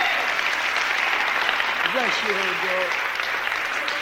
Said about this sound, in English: Give her another clap.